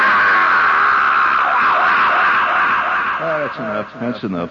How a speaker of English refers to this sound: Speaking of tearing your eye out, that primal scream, the Oedipal scream of total defeat. Give me a little echo chamber, please.